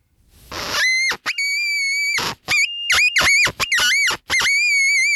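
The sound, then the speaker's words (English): A fox caller whistle blown as a demonstration in loud, high-pitched wailing squeals: a long wavering cry, then a string of shorter quavering bursts with brief gaps, no talking. “And could you give us a demonstration of what you did with your caller?”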